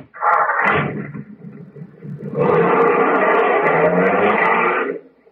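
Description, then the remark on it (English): A car door slams shut, followed by a brief lull, then a loud engine roars and runs steadily for a few seconds as the car drives off. No one speaks. “I'll go out and get in the car, young man.”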